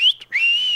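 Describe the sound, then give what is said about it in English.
A person does a gang-type signal whistle, a short two-part signal: a sharp high note, a brief break, then a rising note held steady, loud with no talking. “Is that the whistle? Gang type whistle.”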